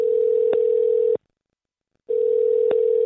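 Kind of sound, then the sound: signal or alarm, telephone dial tone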